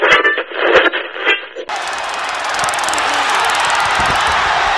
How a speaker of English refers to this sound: That's one of those tasers the police use. It's like a stun gun. That was Scott Hall. That was Scott Hall. You could hear it clicking. It was like a cattle prodder, a stun gun.